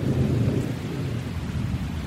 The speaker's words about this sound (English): We are walking along the banks of Decker's Creek. A big thunderhead is rolling in.